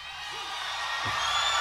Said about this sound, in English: There's a crowd, there's a bit of a crowd vibe. Yeah. But it is. I feel like you didn't hear it again for a while, like, I don't know. It's not as raucous as in other live recordings of theirs.